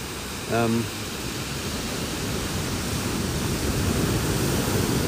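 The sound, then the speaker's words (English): A steady, even roar of ocean waves washing onto the shore fills the whole recording, with a brief voiced sound near the start and no clear talking. “But yes, it's just nice to sit here and watch the waves.”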